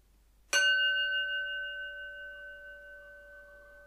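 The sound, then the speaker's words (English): A single mindfulness bell is struck once, clear, its bright metallic tone ringing on and fading slowly over several seconds in otherwise quiet surroundings, marking a moment to focus on the breath. “So I'm going to start with a sound of the bell, just taking a moment to focus on our breath.”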